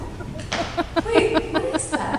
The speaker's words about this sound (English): Is that a chicken? Wait, what is that?